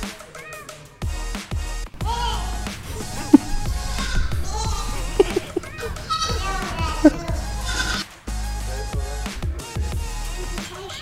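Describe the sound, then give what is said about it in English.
Two goats, brought in as a gift, bleat repeatedly over a busy backdrop of voices and crowd noise, fairly loud, with several wavering calls overlapping the chatter. “What do you want to name the goats?”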